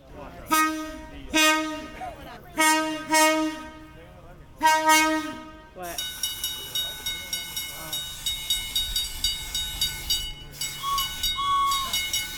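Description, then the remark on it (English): Several loud train horn blasts sound, then a steady, rhythmic clack of three train cars rolling over rail joints, continuous, with a brief high squeal near the end. “So you got two different trains here.”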